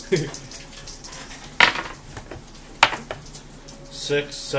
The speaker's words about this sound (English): Why did you stop that dice from rolling and then roll again?